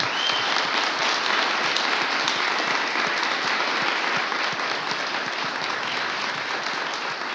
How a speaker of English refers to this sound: Thank you all. Big round of applause for our panel here.